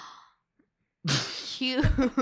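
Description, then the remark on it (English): After a brief silence, someone lets out a sudden, sharp, breathy gasp that slides into a voiced, drawn-out exclamation. “That gasp is just like so like.”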